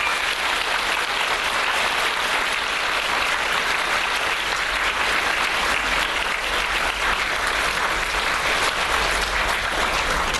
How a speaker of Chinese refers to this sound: 所以呢，我们现在呢以热烈的掌声来欢迎丈夫给我们讲。